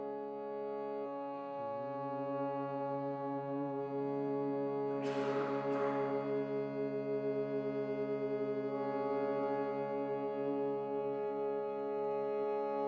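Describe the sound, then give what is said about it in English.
A low, steady tone hummed gently on the exhale, held for a long stretch, rich with overtones and barely changing in pitch, broken midway by a brief breathy rush before the hum carries on. “begin by gently humming on your exhale.”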